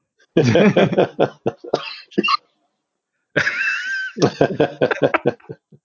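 Two loud, close bouts of harsh coughing separated by a short pause, each a rapid string of raspy bursts with some strained, throaty vocalizing mixed in.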